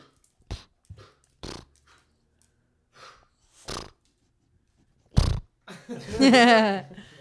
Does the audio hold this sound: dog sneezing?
yes